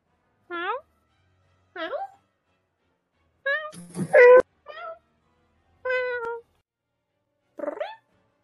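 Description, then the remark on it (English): A cat meows six times in short, separate calls spaced a second or so apart, clear, with the fourth call harsher and louder than the rest. “Apparently there's a lot of cats around here now.”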